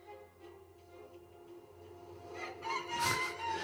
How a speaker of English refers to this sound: I don't know about that creature making the rooster sound